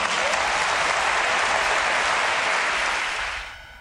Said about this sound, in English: Now notice at the end of that clip how people clapped for what the father said, Tiger's father said, the human race. And this is a humanistic perspective. And so the people cheered.